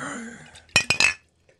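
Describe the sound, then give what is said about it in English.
A glass bottle clinks sharply three times in quick succession, bright ringing knocks as if fumbled and nearly dropped, over a low murmur of background sound. “You nearly smashed your bottle.”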